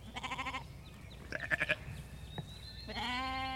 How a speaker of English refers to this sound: it'll be loud enough, the sheep calling, that we can't hear each other